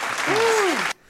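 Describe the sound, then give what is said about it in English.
A short, loud burst of dense applause with a single rising-then-falling cheer-like whoop over it, cutting off abruptly after under a second. “Clapping noises.”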